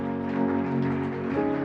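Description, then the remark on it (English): An audience claps in a steady, dense patter while sustained, held musical chords ring underneath, the clapping staying fairly even in loudness throughout. “This your clap is like your smiles this morning.”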